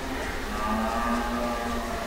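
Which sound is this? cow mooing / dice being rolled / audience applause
cow mooing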